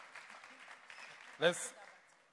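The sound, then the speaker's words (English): Scattered audience clapping forms a steady, moderate patter, broken midway by one loud, brief vocal whoop. The applause then fades off faintly. “Let's clap well now.”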